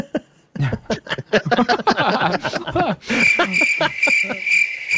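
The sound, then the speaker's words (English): A burst of laughter gives way to a steady, high-pitched cricket chirping that carries on loudly and evenly to the end, like the classic awkward-silence sound effect. “You can't have a bunch of laughter then crickets.”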